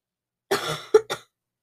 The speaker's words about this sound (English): Do mind my stuffy nose. I have a stuffy nose and a bit of a cough, so sorry about that.